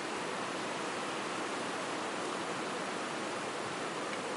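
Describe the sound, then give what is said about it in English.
Rain falls in the morning in a steady, even hiss that fills the whole clip without pause, a dense wash of noise with no separate drops standing out and no voices. “The Lord, in His mercy and grace and His good providence, bringing the rain to possibly distract this morning, but God in His grace helps us to listen with ears to hear.”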